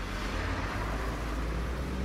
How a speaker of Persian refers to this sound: همینطور که من تو ترافیک پنجشنبه عصر جاده قدیم شمرون میروندم